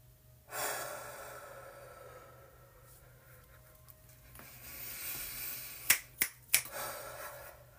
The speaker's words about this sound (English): I am going to personally take one more deep breath. But again, feel free to take as long as you need.